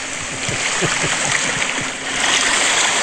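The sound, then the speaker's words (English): Steady rushing water flows throughout, a bright continuous babble with small splashing pulses, like a river, with no voices; a recorded sound effect meant to be beach waves. “That was much more like river than beach waves.”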